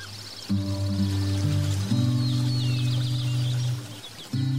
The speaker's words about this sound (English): Allow your thoughts to float as the birds chirp.